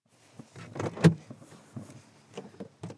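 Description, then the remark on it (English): Someone climbs out of their car at an eco-community festival in Underhill, with shuffling movement and a single solid car door thunk midway, followed by softer clicks and rustles. No one speaks. “As soon as I get out of my car, a man with a big beard walks my way.”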